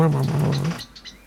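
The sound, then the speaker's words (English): A voice imitates a blackbird's alarm call: a short, throaty burst that breaks into a few sharp, high chattering notes before trailing off, fairly loud. “the blackbird had a distinctive alarm call.”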